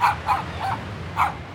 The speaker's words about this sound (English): I barked to let them know I was aware of them.